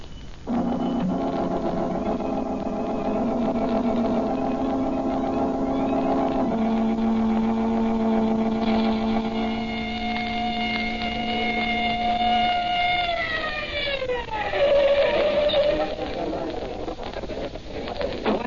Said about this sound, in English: Come on, I got the police car outside. Let's get going.